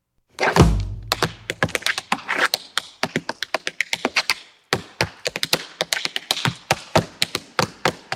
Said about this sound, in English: And yes, those are tap dancers that you hear in this.